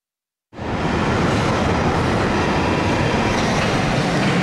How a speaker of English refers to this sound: The Northern Line. I've been commuting to the City of London on this train for decades